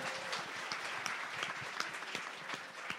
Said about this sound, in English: Can we get a round of applause for the cast?